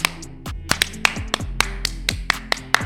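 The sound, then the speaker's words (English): Steady rhythmic clapping: about a dozen sharp, crisp claps at an even pace, with a low humming tone running underneath and no voices. “Slow clap for him.”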